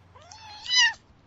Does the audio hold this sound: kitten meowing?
yes